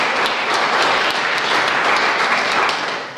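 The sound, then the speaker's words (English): Steady, dense applause from a crowd, many hands clapping at once in a continuous bright crackle that holds level before easing slightly at the end, applauding midfielder Andrea O'Keefe of Aina Kildemona, who is not present. “And again, we don't have her here, but please applaud her.”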